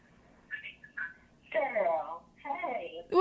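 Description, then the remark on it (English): A caller's voice comes through a phone line in choppy, garbled fragments, cutting in and out as the signal breaks up. It sounds thin and tinny, with short bursts and gaps. “Your signal, I don't know if it's your signal or my signal. Can you hear me okay?”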